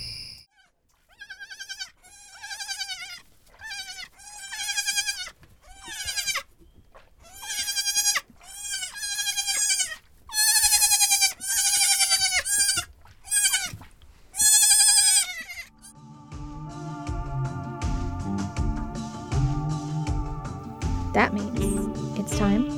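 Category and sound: animal, baby goats bleating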